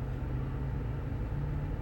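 A heavy truck engine rumbles steadily as the truck drives past, a deep, continuous drone that holds at an even loudness throughout, with no voices.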